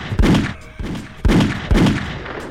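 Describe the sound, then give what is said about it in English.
Four loud gunshots ring out in an uneven rhythm, each a sharp crack followed by a brief booming tail, with no voices in between. “It's that random shot where nothing's straight.”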